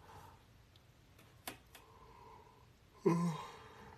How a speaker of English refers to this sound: Was that yawn not live either? Was that a pre-recorded yawn?